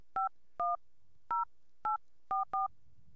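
telephone keypad dialing tones

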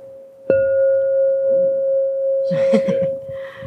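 crystal singing bowl ringing

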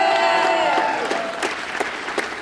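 audience applause

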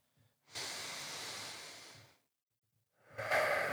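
deep breathing

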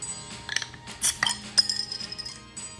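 glasses clinking

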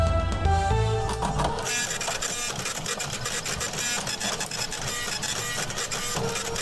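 printer running

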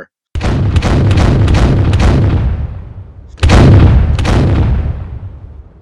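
cannon fire sound effect

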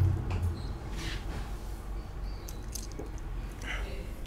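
sipping whiskey

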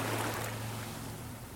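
ocean waves

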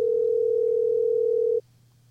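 phone call ringing out

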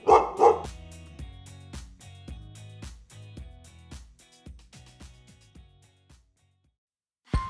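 puppies barking

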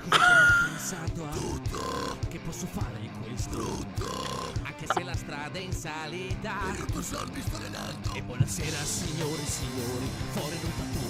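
burping

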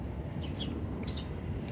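birds chirping

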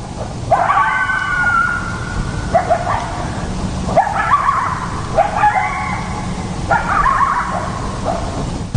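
coyotes yipping and howling

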